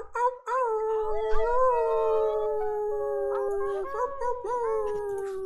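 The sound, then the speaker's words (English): Several people on unmuted microphones imitate wolf howls together, long overlapping wavering tones sliding slowly downward, loud and sustained, with faint background noise and no ordinary speech. “And when you're ready, wolf howl, let them hear you.”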